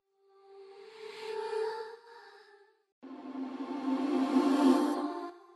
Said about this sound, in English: Yeah, that's just reverse reverb. Let's listen.